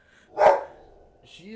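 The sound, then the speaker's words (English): A single sharp bark from a female dog rings out loud, its tail fading quickly into quiet before a person's voice begins speaking at the very end. “Your dog doesn't.”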